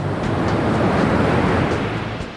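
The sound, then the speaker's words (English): Big ocean waves crash and roar continuously, a loud, dense wash of surf with rumbling low end and hissing spray, no voices present. “Those are big, tall waves.”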